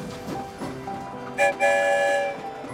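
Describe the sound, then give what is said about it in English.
A train rumbles along the rails with a rhythmic clatter, then sounds its whistle: a short toot followed by a longer, steady blast that fades as the rolling continues. “I wonder where the story train will lead us this time.”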